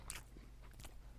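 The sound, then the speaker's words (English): Crunchy chewing of a bite of bacon right up against the microphone: two sharp, bright bursts of biting and munching over a low steady hum, with no voices. “When you said it's an audio medium, I purposely went really close to the mic so that the chewing sounds would be ultra loud.”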